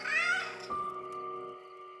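cat yowling

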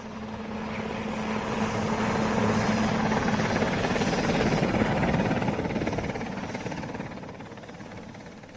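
helicopter arriving

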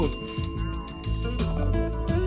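bell ringing

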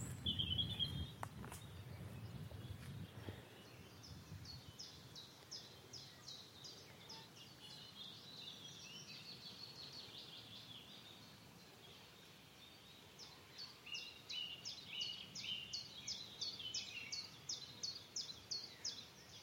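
cetti's warbler song

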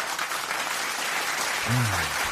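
audience applause

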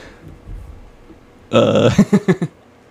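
burp

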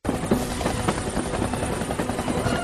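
helicopter rotor

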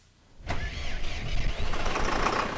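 tractor engine starting

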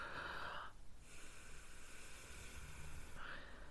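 forceful breathing

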